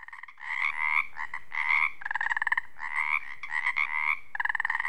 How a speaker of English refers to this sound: It's springtime. As the daylight fades over this wetland, the Pacific tree frog comes to life. They're also known as Pacific chorus frogs.